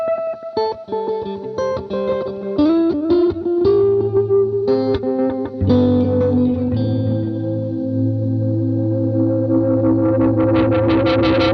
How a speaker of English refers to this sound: This is a new UA pedal they just released called the Galaxy. I use it as a multi-delay. It's not a delay. It's like an echo. Okay. It's supposed to be like a space echo, but I use it for the stacked echo sound.